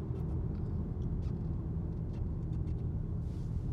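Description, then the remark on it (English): A small range extender engine in a car drones steadily while the car sits idling at a stop sign with its battery at 6 percent, a low, even hum somewhat like a lawnmower that stays constant throughout, with no voices present. “I'm going to come to a stop down here at the stop sign, and maybe you can hear the range extender.”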